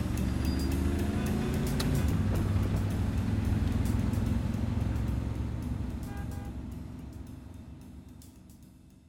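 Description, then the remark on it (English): A car engine rumbles steadily amid traffic noise, with rising harmonic tones early on as the driver steps on the accelerator once traffic opens up, before the sound gradually fades away toward the end. No one speaks. “As soon as traffic opened, I jumped on the accelerator.”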